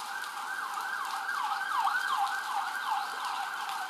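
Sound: ambulance siren passing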